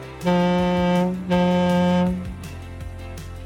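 A boat horn on a river sounds two long, loud, steady blasts in quick succession, followed by a low background rumble as the tones fade.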